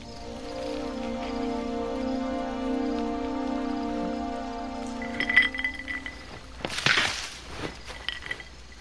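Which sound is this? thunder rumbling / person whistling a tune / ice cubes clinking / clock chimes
ice cubes clinking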